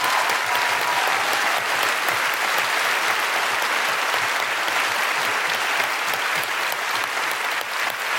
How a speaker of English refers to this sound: Big round of applause for Sarah Pascoe, Aisling Bee, Josie Norton, and Steve Alley.